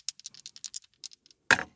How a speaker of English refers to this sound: Really feel like you should be using the chime dice. It sounds like mirror shit jangling together.